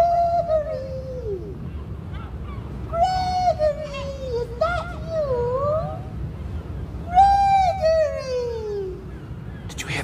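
A series of loud, wailing seagull cries, each a harmonic squawk that slides downward in pitch, repeating in irregular bursts over a low background rumble.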